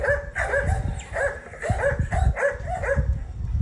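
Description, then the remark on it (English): Two harlequin Great Danes, Hither and Yonder, belonging to Dr. Norman, bark deeply and repeatedly at a lab in quick, overlapping bursts, roughly eight or nine loud barks over a low rumbling background, with no talking. “You're probably wondering about the barking dogs.”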